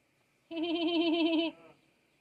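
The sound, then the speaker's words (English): Turkeys gobble in one loud, warbling burst lasting about a second, a quavering mid-pitched call that trails off into a softer tail, with no talking. “I love having those turkeys around because they're like the perfect audience. You know, they always laugh at my jokes.”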